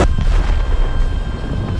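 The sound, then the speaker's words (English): A heavy, booming crash hits at once as two figures speeding toward each other slam their heads together, then a dense low rumble keeps roaring steadily without fading. “They just slammed their heads into each other, knocking their dumb asses out.”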